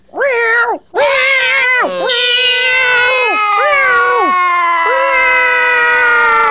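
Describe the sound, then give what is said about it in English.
Two human voices imitate two cats in heat fighting over one cat, trading long, wavering, nasal wails that rise and fall in pitch, loud and overlapping, with one brief gap near the start. “Have you ever heard two cats in heat fighting over one cat?”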